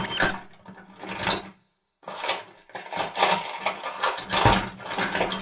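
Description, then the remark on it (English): A small saw rasps in quick, scratchy back-and-forth strokes, pauses briefly, then resumes with a steady metallic grinding rhythm. No one speaks. “He took out his micro saw. He began sawing off the spiky spikes that were stuck to the sides of Blue Pig's nose.”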